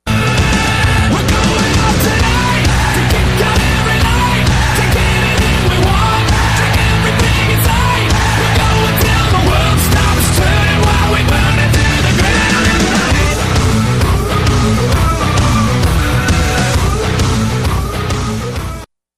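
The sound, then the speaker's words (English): A wrestler's entrance theme plays loud and dense for nearly twenty seconds, with sustained melodic tones over a steady, punchy beat, ending abruptly. No one speaks over it. “making quite a name for himself in every match that he's done, so I figured I'd give him a little bit of a shout-out with his theme music this week.”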